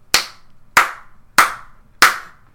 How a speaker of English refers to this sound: Yeah, thanks. Thanks for applauding my my reference to this week's episode of Tiger Mask.